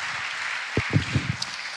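A brief patter of audience clapping, a soft, steady hiss of many hands with a few louder low thumps mixed in, fading out after under two seconds. No one speaks.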